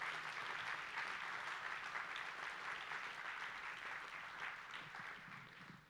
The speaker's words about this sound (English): Real quick, let's go ahead and let's just offer God a praise, a hand clap, just as confirmation of this vision as we follow our pastor. Can we do that this morning?